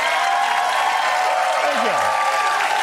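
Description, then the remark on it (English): Sustained applause from a studio audience after a comedy host's joke fills the whole stretch, a dense steady wash of many hands clapping at once, fairly loud, with a brief murmur of voices underneath near the end. “Thank you for clapping for that, man.”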